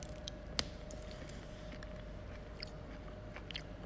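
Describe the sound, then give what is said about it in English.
A single sharp, crisp bite into a crunchy fruit, eaten as a snack at a work desk after its crunchy leaves are peeled back, followed by several seconds of soft, crackly chewing. The sounds are quiet, with no one speaking. “So I've peeled back the weird crunchy leaves and about to take a bite.”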